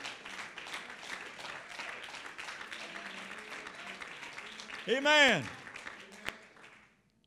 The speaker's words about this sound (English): If you really believe with me that when it came time for you to have a pastor again, do you really believe that God looked down and sent you his very best? If you believe that, give them a good hand clap.